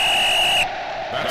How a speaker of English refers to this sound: Well, there's the whistle signifying the two-minute drill, and I'm calling this week's play.